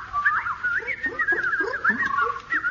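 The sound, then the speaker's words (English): A person imitates an alarm with their voice to scare off birds and stop them digging up seeds: a continuous, warbling whistle-like tone that wavers up and down for a few seconds with no other sounds. “The simplest method is the basic oral alarm like this.”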